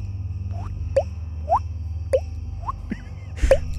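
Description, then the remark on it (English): Water dripping in a steady rhythm, heard at a bedroom door, about seven bright plinking drops roughly half a second apart, each with a quick rising pitch, over a low constant hum. No one speaks. “They walked cautiously down the hallway, and when they came to the bedroom door, they could hear another noise. Drip, drip, drip.”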